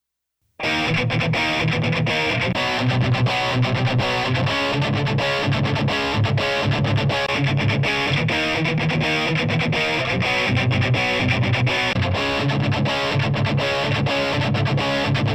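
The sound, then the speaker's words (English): Heavily distorted, dense audio plays continuously at a loud, steady level, with a bright, gritty hiss sitting in the upper midrange throughout. No one speaks. “Not only did that, I do hear that kind of 3-4K hiss that you're talking about.”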